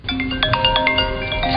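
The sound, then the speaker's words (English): A phone ringtone plays a steady electronic melody of bright, overlapping tones, fairly loud, with no one speaking; it is the call to Adrian Beltre from the Baseball Hall of Fame in Cooperstown, New York, telling him he was elected. “We got time, actually, to do it now where Adrian Beltre was, he got a pretty good phone call to let him know that he was getting in, and it was a really good moment.”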